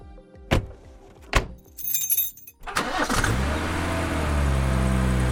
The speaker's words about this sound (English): As we drove up to their house on their farmland,